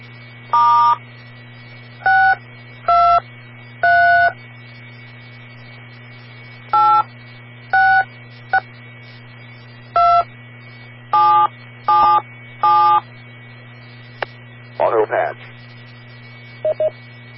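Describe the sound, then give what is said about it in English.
A string of about a dozen DTMF touch-tone beeps, keyed in short bursts with uneven pauses to access a radio autopatch, heard over a steady low radio hum with a brief garbled chirp near the end. “Kilo 7, Tango Echo Juliet to access Autopatch.”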